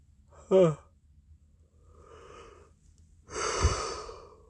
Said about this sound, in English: Sorry for all the yawning. I am tired.